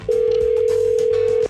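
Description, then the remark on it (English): A single steady electronic ringback tone hums at one pitch for over a second as a woman calls her boyfriend by phone, with faint background sounds underneath. “She's going to call her boyfriend”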